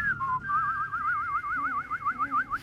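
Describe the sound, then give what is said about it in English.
A person whistles a single sustained tone with a wavering, trilling vibrato that grows stronger toward the end, with faint background noise and no talking. “That was my whistling.”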